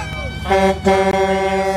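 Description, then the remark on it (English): A loud truck horn blares in long sustained blasts, its brassy tone briefly breaking twice before holding steady to the end, over a rumbling background. “Again, this truck.”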